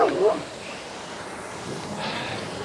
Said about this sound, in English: I think the dog has an issue with my coaching.